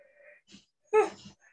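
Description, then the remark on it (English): A single breathy yawn: a soft intake, then a brief voiced groan that slides downward in pitch and fades into an airy exhale, with quiet breathing around it. “I'm still yawning.”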